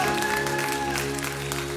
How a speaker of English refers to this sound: Come on, give God a hand clap if you believe that, amen.